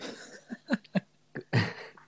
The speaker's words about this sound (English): What, the smack? No, somebody farted.